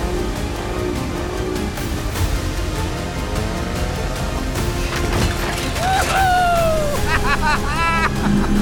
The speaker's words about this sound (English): Sorry, this boat is more responsive than I thought. It's getting fast.